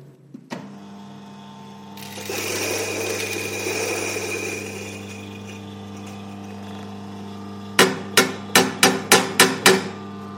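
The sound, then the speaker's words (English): A coffee grinder whirs with a steady motor hum and gritty grinding of coffee beans for a paper filter for several seconds, followed by a quick run of six sharp, evenly spaced knocks near the end. “So we're going to grind this coffee up for paper filter.”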